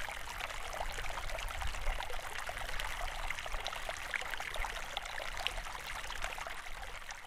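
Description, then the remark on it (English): A steady stream of river water flowing, rushing and babbling with constant splashy texture and faint low rumble, even in loudness throughout, with no voices. “Now, the definition of a river, offered by the Cambridge Dictionary, is a natural flow of fresh water across the land into the sea, a lake, or another river.”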